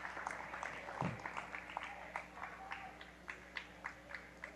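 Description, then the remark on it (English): Crowd applause at a basketball game for player Luke Kylik as he fouls out with his fifth foul, finishing with 14 points and seven rebounds: a soft, steady patter of many hands clapping that thins out into scattered individual claps by the end, with no one talking over it. “He'll get a nice round of applause.”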